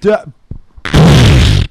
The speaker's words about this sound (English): That's because he farted into his mic as a 30-year-old man.